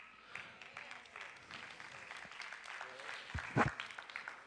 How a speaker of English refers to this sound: I really didn't expect a lot of hand claps. That's okay.